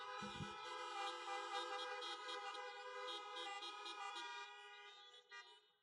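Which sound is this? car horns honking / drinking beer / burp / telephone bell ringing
car horns honking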